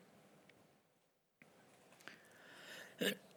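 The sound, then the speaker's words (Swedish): A single loud cough right up against the microphone, a sharp burst near the end after a few seconds of quiet rustling and breath, with no one talking. “Det var inte meningen att hosta i ert öra.”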